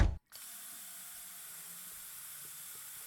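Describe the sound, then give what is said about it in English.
A short knock, a split-second pause, then a bathroom tap gushes in a steady, hissing stream, for running a burn under, that runs without a break to the end. No one speaks. “Well, go in the bathroom and run the burn under some water.”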